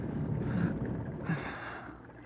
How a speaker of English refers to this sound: must be snoring hard.